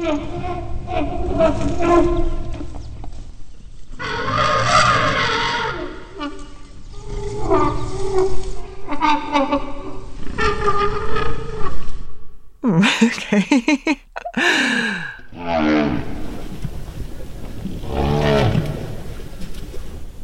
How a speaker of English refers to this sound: So my producer Matt decided to test me. He played some elephant noises. What do you think that means? I think it means careful, beware. No, it's an infant trying to eat.